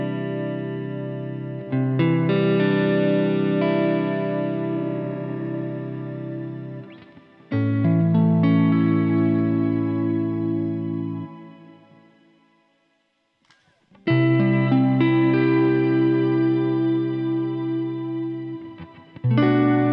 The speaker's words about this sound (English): kind of ambient, you know, pad like a sound that I think is, you know, really kind of lends itself for more musical applications and really kind of pairs nicely with the ability to adjust the amount of shimmer through the knob.